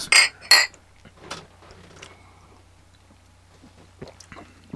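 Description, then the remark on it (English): Two quick, bright clinks of beer glasses meeting in a toast among men, loud, followed by quieter handling and faint shuffling sounds. “Cheers, fellas.”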